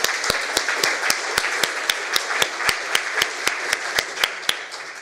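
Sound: audience round of applause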